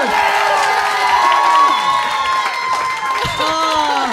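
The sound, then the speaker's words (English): A live audience of the Little Dum Dum Club show bursts into sustained applause mixed with loud cheers and whoops, a dense, steady roar of many voices and clapping lasting several seconds. “What sort of show gets a round of applause for saying the host should kill themselves?”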